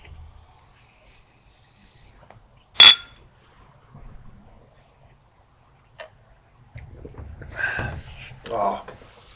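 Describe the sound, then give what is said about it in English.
A single bright clink of glasses touching in a toast rings out sharp, then fades before murmured voices follow. “After we cheers.”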